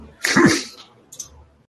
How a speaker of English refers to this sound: I thought you sneezed.